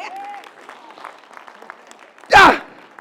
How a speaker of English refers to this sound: Glory be to God. I can get more hand claps than that.